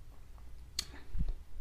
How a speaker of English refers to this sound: But anyway, let me drink my water.